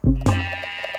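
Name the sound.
sheep bleating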